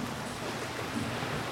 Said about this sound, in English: Now, let's listen to the ocean.